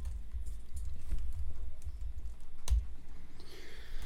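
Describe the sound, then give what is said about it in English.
Quick, irregular keyboard clicks as someone types down a name on a computer keyboard, with one sharper, louder click near the middle, over a low rumbling background and no speech. “I hear some clicking back there.”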